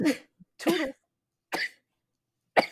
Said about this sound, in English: I'm just sneezing. Oh, bless you. Oh, that sounded like a cough. Why are you judging my sneezes so hard? I'm sorry. I am very self-conscious about my sneezes.